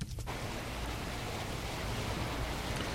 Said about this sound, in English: Okay, that's my … album playing in the background now. And if I do VO dash again, it stops the audio playing.